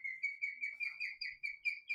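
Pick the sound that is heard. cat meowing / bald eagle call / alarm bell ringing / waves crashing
bald eagle call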